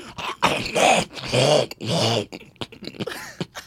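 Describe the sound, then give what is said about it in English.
A voice imitates a West Indian person loudly clearing and hawking their throat: three raspy, gravelly, forceful bursts in quick succession, then a few smaller throaty scrapes trailing off. “And hearing a West Indian person scratch their fucking throat.”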